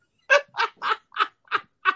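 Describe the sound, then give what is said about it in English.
Six short, blaring air horn blasts, a rap air horn sound effect, in a quick, punchy rhythm, each loud and brassy with a nasal, honking edge, and no voices over them. “I'm doing it for the rap air horn, baby.”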